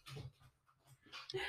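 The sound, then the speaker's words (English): A dog pants in quick, breathy bursts, pausing briefly in the middle before the rapid huffing picks up again, louder, toward the end. “Sorry, my dog has left the building.”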